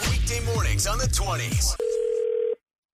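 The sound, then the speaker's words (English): A busy stretch of swooping voices cuts off, and a steady telephone dial tone follows at the start of a prank phone call, a flat, clear hum holding for under a second before stopping abruptly. “You're going to hear what happens in your phone tap right now. It's another phone tap.”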